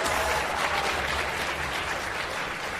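A quiz-show crowd claps steadily for about three seconds after a contestant's correct answer, a dense, even wash of many hands with no clear individual beats and no voices breaking through.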